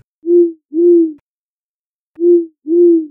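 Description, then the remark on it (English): Two owls hoot at night in paired calls, low and mellow, each pair of hoots repeated after a short pause. The calls are loud, with silence between and no one speaking. “The owls hooting.”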